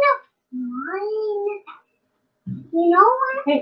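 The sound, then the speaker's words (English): A toddler entering the room babbles and chatters in a high-pitched voice in two short bursts separated by a brief pause, with rising and falling sing-song tones and no adult speech. “Oh, here comes the toddler.”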